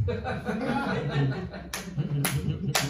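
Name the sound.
audience applause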